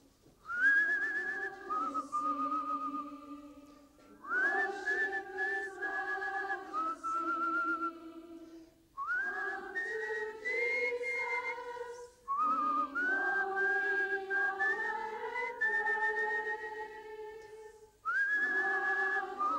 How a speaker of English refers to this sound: we just need a note, just one note, because the whistling, we've got about 50 or 60 wind instruments here. And we're going to do it, all right? Right, okay, got the note? Let's just try it. We're going to whistle and sing to the Lord.